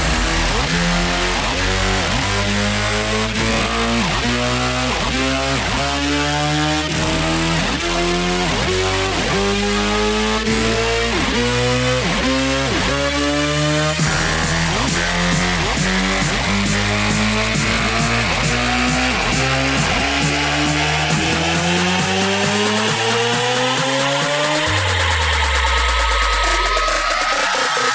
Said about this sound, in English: and gentlemen, start your engines.